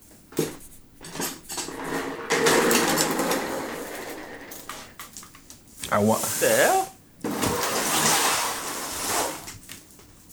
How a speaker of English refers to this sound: Chair's going to hell. that's a joint you was complaining about last week, man. What? That's a chair? Yeah, but my apparently my chair is too squeaky for this podcast, dog.